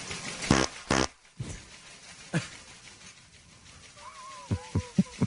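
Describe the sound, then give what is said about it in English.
A pair of short, buzzy fart sound effects in quick staccato succession, then a fainter burst, followed by brief whistling tones and sharp clicks near the end. No one speaks. “Just want to let everyone know that business has increased 38% since the addition of a staccato fart sound.”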